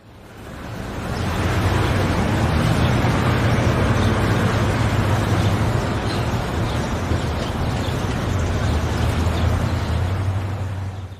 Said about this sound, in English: I can't believe all this freaking traffic.